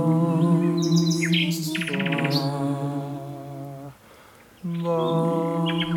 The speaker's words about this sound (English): I have to say, I've been twice now to hear you singing with nightingales, and it's a spiritual experience for me.